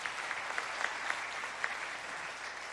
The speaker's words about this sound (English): Will you clap if you've ever played that?